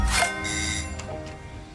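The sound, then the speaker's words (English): A bell rings with bright, metallic tones, struck a few times in quick succession, its shimmering overtones lingering and slowly fading. No one speaks. “In its promotional material, the company emphasized they weren't just in it for that opening bell, but also the bike bells of satisfied riders and the doorbells of happy customers.”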